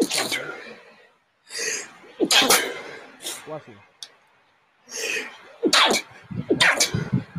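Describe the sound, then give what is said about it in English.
Several loud sneezes from a person with allergies burst out one after another, separated by sharp breathy inhales and brief pauses, with no talking over them. “Bless you. You good?”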